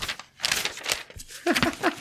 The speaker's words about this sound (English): Keep rattling the paper. I love hearing that on the microphone.